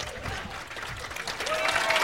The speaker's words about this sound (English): They're all sitting next to each other, too, so I think some people are just clapping because they didn't want to be left out.